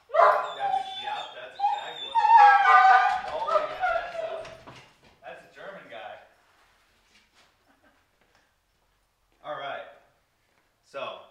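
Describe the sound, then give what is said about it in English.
Two pet dogs, Bane and Luna, whimper and howl in a long, wavering stretch of whines, freaking out and needing to be let outside, then a quiet pause before two shorter yelping bursts near the end. “I might need to do something with these dogs”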